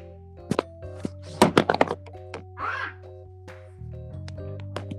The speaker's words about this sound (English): Ah! Oh, I dropped the phone. Sorry. That might end up on the gag reel.